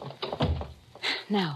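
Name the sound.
door being closed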